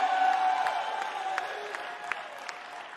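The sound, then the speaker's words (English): A church audience gives God a round of applause before the sermon, clapping steadily, a dense patter of many hands with a few sharper individual claps standing out, fading slightly over the few seconds, with no voices. “Give God one more round of applause, and I'm going to preach.”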